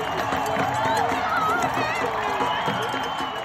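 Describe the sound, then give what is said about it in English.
A dense outdoor crowd in the streets of New York City on Saturday, November 7th, celebrating the U.S. election results, fills the air with steady cheering and overlapping shouts, loud and continuous, with whoops and voices rising above a constant roar. “People were dancing and beeping in the streets and in the parks.”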